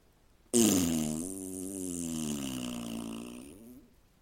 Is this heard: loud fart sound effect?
yes